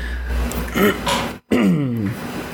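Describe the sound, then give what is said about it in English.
A man clears his throat, a short rough rasp followed by a longer gravelly, voiced grunt after a brief pause, with no words spoken. “Sorry, I keep having to clear my throat.”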